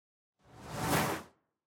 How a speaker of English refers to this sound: Whoosh, whoosh, whoosh.